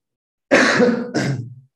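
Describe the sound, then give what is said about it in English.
Two rough, raspy coughs in quick succession, the first longer and the second shorter, with a throaty, clearing quality and no talking around them. “don't worry, I'm gonna edit coughs.”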